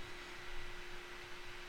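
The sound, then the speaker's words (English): A steady, faint hiss of static runs unbroken through the whole stretch, with a thin constant hum beneath it and no voices or other sounds. “And do you hear static? Are we getting static? A little bit, yeah, maybe.”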